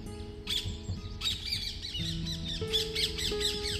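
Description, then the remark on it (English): Several birds sing and chirp outdoors early in the morning in quick, overlapping bursts, some calls near and others far away in the distance, over a quiet, very still and calm background with a faint low hum. “And all these birds around me singing their beautiful tune with their beautiful voice.”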